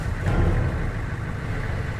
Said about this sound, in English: Shut the engine off. I'll need to be able to hear.